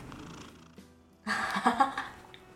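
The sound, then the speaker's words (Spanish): A cat purrs close to the microphone, a soft low rumble that swells into a louder, rougher stretch of sound in the second half before easing off. “Oye, acerca el gato al micrófono, weón, para que haga una ASMR de sus.”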